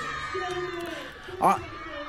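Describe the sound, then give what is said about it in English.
A room of 37 five-year-old children shriek and shout over one another at a T-Rex in a steady, high-pitched din, with one louder squeal bursting out just past the middle. “But you can hear that. All screaming, just all up.”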